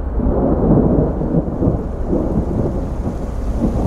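A loud, steady thunderstorm in the Blue Ridge Mountains: deep rolling thunder rumbles continuously beneath a dense wash of heavy rain, with no voices present.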